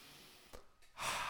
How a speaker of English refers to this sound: Now, you ready to take a deep breath? Here we go. Let's take five.